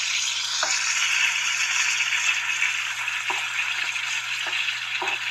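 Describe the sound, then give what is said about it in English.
Food sizzles steadily in a frying pan, a loud, continuous crackling hiss, with a few brief soft knocks like utensil taps scattered through it. No one speaks. “See you at the frying pan.”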